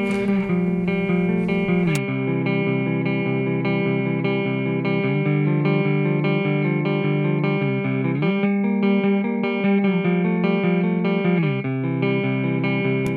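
A sustained, heavily processed electric guitar riff plays steadily with no voices, its layered notes shifting between a few chords in a slow, droning repeating pattern at a constant, fairly loud level.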